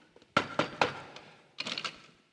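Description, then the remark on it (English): Three sharp knocks on the door of Scrooge's nephew's house, a short pause, then a quicker burst of four more raps. The taps are crisp and fairly loud, with nobody speaking. “He passed the door a dozen times before he had the courage to go up and knock.”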